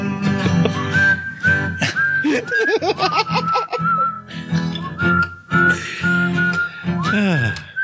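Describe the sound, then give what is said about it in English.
A bright whistled melody rides on top of a song's full backing music, holding long steady notes with a few sliding pitch bends, loud and up front throughout. “The whistles.”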